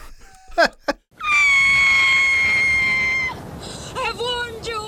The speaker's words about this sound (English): Suddenly, we hear the piercing shriek of a toothless old woman who has apparently warned them against pursuing this tomb.